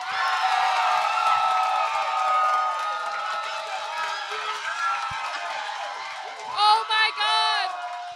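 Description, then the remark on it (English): A live audience erupts in loud, sustained cheering and screaming for several seconds as the second date is announced, dense with high shrieks and whoops, rising into a few sharper bursts of shouting near the end. “I mean, it's obviously all uproarious.”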